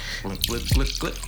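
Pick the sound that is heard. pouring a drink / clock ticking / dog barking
pouring a drink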